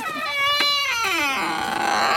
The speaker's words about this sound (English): Now, that's the sort of creak you want from a garden gate, isn't Perfect. It? Perfect. It's a sort of. You want to record that several times and keep it in your sound library and sell it to horror movies.